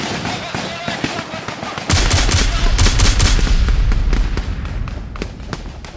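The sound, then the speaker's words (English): Rapid bursts of heavy machine gun fire from the guns of an armored infantry fighting vehicle crack out in quick, repeated sharp blasts, joined partway through by a loud, continuous low rumble like an engine beneath the shooting. “Yourself and a few other refugees hauling the mutilated wounded out of the vehicle while its guns churn out hate towards the invisible enemy.”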